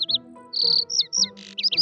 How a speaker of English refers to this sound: Well, hello, bird.